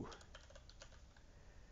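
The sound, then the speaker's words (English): A quick flurry of soft computer keyboard keystrokes as a giveaway command for Knights of Pen and Paper 2 is typed, several clicks in an uneven rhythm, fairly quiet over a low background hum. “So, type exclamation point knights 2.”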